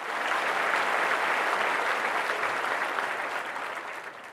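Sustained applause from an audience for a speaker at an entrepreneurship talk, a dense wash of many hands clapping steadily before gradually thinning and fading toward the end.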